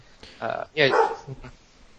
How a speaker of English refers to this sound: Nope, sorry, it's the dog barking in the background.